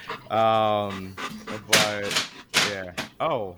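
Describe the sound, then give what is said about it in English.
Breathy puppy panting comes in several quick bursts, mixed with drawn-out whiny voiced sounds, all loud with short pauses between them. “My dirtball monster puppy.”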